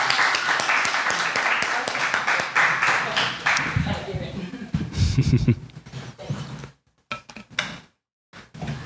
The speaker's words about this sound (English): Give her a round of applause.